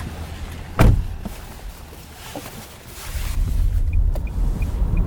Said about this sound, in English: You'll see from the weather today, it's very windy, lots of natural resource here, which makes it a prime location for renewables projects.